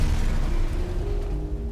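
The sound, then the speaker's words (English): A heavy bomb explosion rumbles loudly with deep low-end roar, sustained for a moment and slowly fading, with no voices present. “And he'd do it with a bang.”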